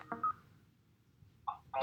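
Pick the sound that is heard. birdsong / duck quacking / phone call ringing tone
phone call ringing tone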